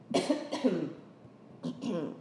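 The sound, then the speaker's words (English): Two quick pairs of harsh coughs from one person, separated by a short pause, with no talking in between. “I really try not to cough because I don't want to edit this again, but excuse me.”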